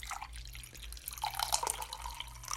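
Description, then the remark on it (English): A brewed liquid is poured out after steeping, pouring and trickling in a steady, splashy stream for a few seconds over a faint low hum, with a few drips at the end. No one speaks. “And then we'll go ahead and pour this out.”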